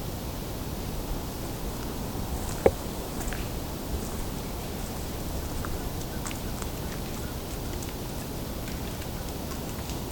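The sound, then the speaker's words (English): Campfire crackling from a campfire at a nearby campsite: sparse, irregular pops and snaps over a steady hissing wash of noise, with one sharper crack standing out early on. No voices. “It's a bit of background sound here from a campfire at a nearby site, campsite. So some of the crackling is that.”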